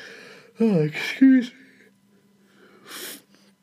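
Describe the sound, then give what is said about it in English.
A drawn-out, voiced yawn with a sliding, groaning pitch, fairly loud, followed by a pause and a soft breathy exhale. “I always yawn when I do this podcast myself.”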